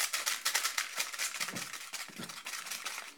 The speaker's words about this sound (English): You know those pork scratching crackly poppy thingies? I'm going to pour the sherbet in and I'll give it a mix. Oh, this should be interesting.